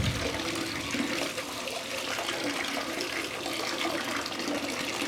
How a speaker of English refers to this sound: I got the water running here. Cold, heat up. Come on. Hot. It's cold. I want hot. Come on.